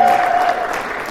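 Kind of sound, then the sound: crowd, audience round of applause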